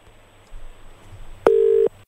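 A single loud, steady electronic tone from a phone line, the ringback of an outgoing call returning a missed call, sounds for under half a second over low background hum, followed by a sharp click.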